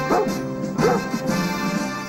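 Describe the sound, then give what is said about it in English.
A dog barks two or three times in quick, yelping bursts, loud, over a steady musical background, from Rin Tin Tin, a show about a dog with a cavalry group in the Wild West. “About a dog. Right. Who was a dog for a cavalry group in the Wild West.”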